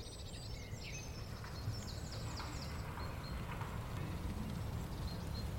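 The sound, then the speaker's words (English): Several birds sing high, clear whistled phrases over a steady low rumble of background noise, the songs overlapping throughout. “When you tune into the bird songs, honestly, especially when meditating, the sound of birds, the different tunes, is a different energy, I'd say.”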